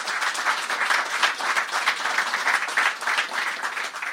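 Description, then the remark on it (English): A crowd applauds steadily, many hands clapping in a dense, continuous patter that holds at a fairly even, lively level for several seconds with no voices on top. “So round of applause for the guys, please.”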